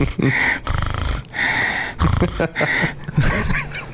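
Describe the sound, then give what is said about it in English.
A voice imitates a dog's snorty, wheezing snore breath in several rough, rhythmic bursts, fairly loud, with no spoken words. “she just constantly has this like snore breath, like my Shih Tzu.”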